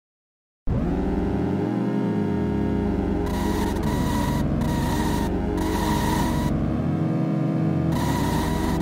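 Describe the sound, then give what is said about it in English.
Buzzy electronic engine tones from a car racing video game drone continuously, four distinct engine sounds from different cars rising and falling as they rev and shift, with bursts of hissy static cutting in and out; no music or voices. “There's no music or anything, but you at least have four distinct engine noises and different cars going on.”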